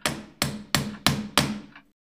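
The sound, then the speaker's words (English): Winston's cane tip claps against a wooden floor five times to call for attention, in a steady, even rhythm, each knock sharp and hard with a short woody ring. There is no talking. “Winston would often use his cane to call for attention, clapping the foot of it against the wooden floor.”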